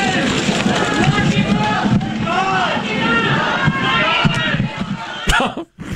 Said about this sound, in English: in a federal court in San Diego on campaign finance charges. They were greeted by protesters as they were going into the courts. Lock him up! Lock him up!